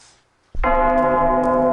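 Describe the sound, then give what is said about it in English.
After a brief hush, a loud, slowed-down metal track crashes in with a heavy bell-like strike, its rich sustained tones ringing slightly out of tune over a thick low rumble. “Yeah, they're like out of tune bells now.”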